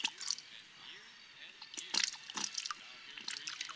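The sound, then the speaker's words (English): Foley sound effects for a film scene: wet plopping sounds in a toilet with crackling, fizzing bursts scattered across the few seconds, echoing, some louder pops around the middle, over a faint murmur of voices. “But no, we have to go with the plop, plop, fizz, fizz from the toilet.”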